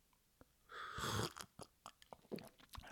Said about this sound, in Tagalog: And bago ko siya pasalamatan ay ihigop muna ako sa coffee na pinadala niya.